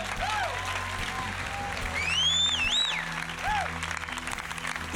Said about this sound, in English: Amen. Give the Lord a clap offering, everybody.